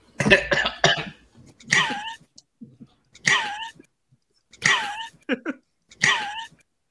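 A sound bite is played back in which a man coughs and dies: harsh, raspy bursts of coughing, about five fits spaced a second or so apart, loud, with short wheezy gasps between them and no talking.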